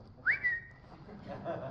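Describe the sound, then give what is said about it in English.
A quick upward-sliding whistle that holds a bright tone for about half a second, like a phone's text alert chime, followed later by a fainter short tone over low background hum. “That is exactly the same sound that our daughter's iPhone has when a text comes in.”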